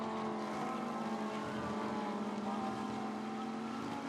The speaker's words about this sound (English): These four cars that are heading now up into the climbing S's, that bright gold of Shihan Chandrasoma running third right now in the Pro-Am